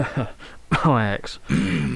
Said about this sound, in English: Sorry, I got a bit of a... You got a bit of a cough there, my friend?